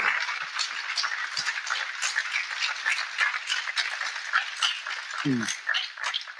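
An audience applauds Tavis Smiley and Ian Rowe steadily, many hands clapping in a dense, even crackle that holds for the whole six seconds, with a brief vocal whoop rising near the end.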